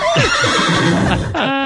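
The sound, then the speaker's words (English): A horse whinnies loudly, one long wavering neigh with shaky rising and falling pitch that ends in a sharp, buzzy snort. “Hold on, my horse is talking to me.”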